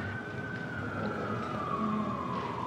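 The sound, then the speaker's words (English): A police siren used in a music score wails steadily, its tone sliding slowly downward over a dense, rumbling background with no voices present. “I put police sirens in.”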